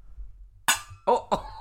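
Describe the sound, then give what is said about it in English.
Drinks clink together in a toast, a sharp ringing tap followed by a few more quick glassy knocks against a quiet background. “Can I just cheers you? Yeah. Cheers. No, you got to hit the top of it.”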